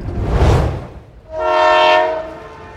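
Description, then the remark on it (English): A train rumbles past with a broad, noisy roar, then a loud, sustained horn blast sounds for about a second and a half, strong and steady with rich harmonic tones. “Wow, look, trains, steamboats.”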